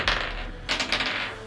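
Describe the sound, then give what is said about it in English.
Dice clatter and roll across a table for a constitution saving throw, in two rattling bursts, a short one first and then a longer tumbling one, bright and clicky with no voices over them. “Go ahead and give me a constitution saving throw.”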